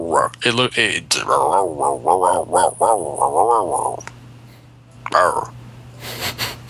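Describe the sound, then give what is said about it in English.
A dog lets out a run of throaty grunts and rumbling growls in quick bursts, followed by a pause and a couple of short snorting sounds. “Hi, dog.”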